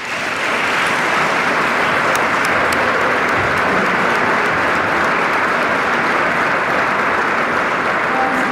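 Sustained, loud audience applause from a large crowd in a legislative chamber, given for the state cabinet, a dense wash of clapping that holds steady for several seconds without any voices breaking through.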